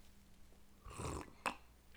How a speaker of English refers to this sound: But anyways, once again, coffee sip.